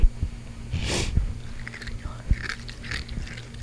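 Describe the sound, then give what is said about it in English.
Close, wet chewing right against the microphone, with a few sharp crunchy bites and a breathy snort between them, steady and mouthy over a low background hum. “Okay, you're gonna chew into the microphone.”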